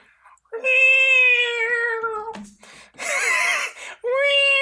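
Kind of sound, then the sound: vocal imitation, person imitating cat meowing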